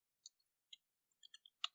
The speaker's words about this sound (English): Hear the keyboard clacking.